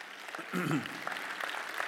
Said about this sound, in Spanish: Tremendo. Un aplauso al Señor.